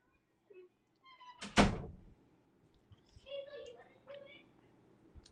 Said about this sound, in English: Shut the door, baby. Shut the door.